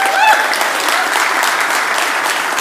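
An audience claps steadily in a dense, even wash of applause, with a brief whistle-like tone near the start before the clapping continues unbroken at a constant, fairly loud level.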